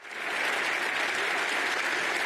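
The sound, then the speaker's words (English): Loud, sustained, rapturous applause in the European Parliament as Ukrainian President Volodymyr Zelensky arrives, a dense continuous roar of clapping that swells in quickly and holds steady with no voices standing out. “An historic address, the Ukrainian President Volodymyr Zelensky arrived into the European Parliament to rapturous applause.”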